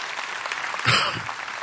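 An audience applauding, a dense steady wash of many hands clapping that swells briefly near the middle before settling back to a continuous patter.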